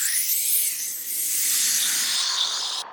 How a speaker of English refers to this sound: The steam from my dinner hissed.